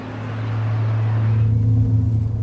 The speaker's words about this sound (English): We're on one of the main roads leading out of the city, and in front of us there is a line of cars, buses and coaches carrying people away from the city.